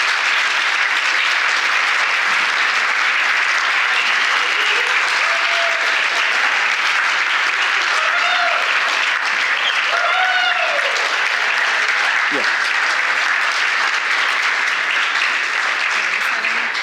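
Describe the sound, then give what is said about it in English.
A church audience applauds as people are invited up onto the stage to be commissioned, in a dense, steady wash of clapping that holds loud throughout, with a few voices and brief cheers rising above it partway through. “You guys can clap with me, all right?”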